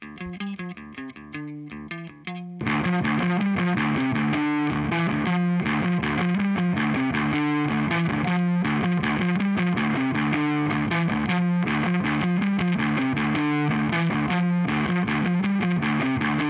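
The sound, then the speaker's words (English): A heavy electric guitar riff opens briefly clean, then kicks into thick, saturated drive distortion as a Demodash 112 Plus Drive Stage pedal is engaged and its drive slowly pushed. It chugs rhythmically and loud for the rest of the passage, with no talking. “So let's listen to a heavy riff. I'm going to play it clean, and then we're going to initiate the 112, and then I'm going to, again, just slowly push that drive, and we're going to see how that sounds.”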